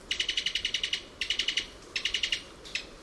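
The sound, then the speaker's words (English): A Cuban tody, a tiny bird, gives a rapid staccato call from its throat: three bursts of quick, sharp, high-pitched notes, each burst several notes long, followed by a single short note, clear with no talking. “This staccato call comes from the throat of a Cuban toady.”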